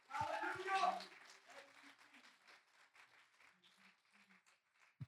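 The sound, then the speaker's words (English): An audience claps their hands in praise to God in a loud, dense burst of applause that thins into scattered, fading claps over several seconds, with voices mixed in underneath. “Would you just clap your hands unto him for just a few moments?”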